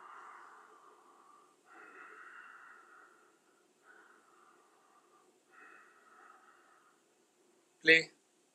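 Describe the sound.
A person imitates deep sleep breathing: four slow, drawn-out wheezy breaths, moderately loud, then one sharp, loud snort near the end.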